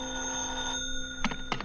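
A telephone rings with a sustained electronic trill that fades, then two short ring bursts follow in quick succession. It is moderately loud, with no voices.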